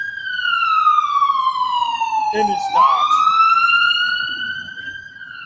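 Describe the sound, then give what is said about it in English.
A loud siren of a red, black, and green ambulance wails in one long sweep, sliding slowly down in pitch and then climbing back up, while a voice speaks briefly over it midway. “Red, black, and green ambulance.”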